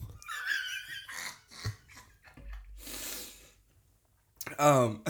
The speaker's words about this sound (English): So, did you hear that little, like, weird burp? Yeah, internal burp? That was, like, grosser for some reason than a regular burp.